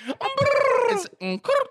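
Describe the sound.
Someone imitates a pigeon with a warbling, cooing voice: one long wavering call, then two short bursts, fairly loud, with no other talking.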